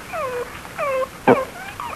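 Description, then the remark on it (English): A puppy out in the cold rain on a harbor pier whimpers in a series of high, thin, falling whines, about four or five plaintive cries with brief gaps, fairly clear, no one speaking. “What's that? Well, hello, pup. What are you doing out in the cold rain, huh? You cold, pup?”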